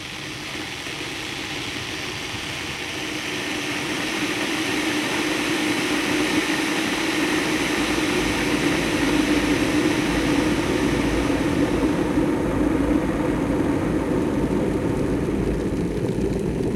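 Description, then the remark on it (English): A hot water kettle heating, its low rumbling hiss swelling after a few seconds into a steady, roaring rush that holds without a break. No voices. “That was ….”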